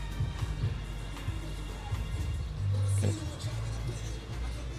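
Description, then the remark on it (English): Muffled, bass-heavy music thumps from the stereo of a passing car, the low end booming over steady traffic and engine rumble while the higher parts of the song stay faint. “Let's see what this guy's playing out of his car.”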